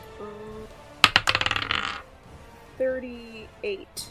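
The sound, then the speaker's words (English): Dice are rolled for initiative in a tabletop role-playing game, clattering across a hard surface in a quick burst of rattling clicks that slows and settles after about a second, with brief murmured voices before and after. “Alright, everyone, roll initiative!”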